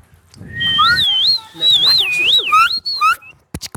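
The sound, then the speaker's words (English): A person whistles a loud, warbling tone for about three seconds, the pitch wavering up and down like a trill, followed by a few sharp clicks. “I can actually whistle.”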